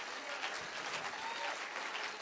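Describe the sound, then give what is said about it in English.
An audience claps steadily together in praise of Jesus Christ, a dense, continuous wash of many hands with a bright, crackling texture that stays at an even loudness throughout. “Why don't we give Jesus Christ a hand clap of praise right now?”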